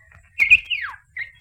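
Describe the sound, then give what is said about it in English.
A bird chirps in short, high-pitched bursts: a fluttering call that slides downward, then two brief chirps after a pause. No one speaks. “What did you say, bird?”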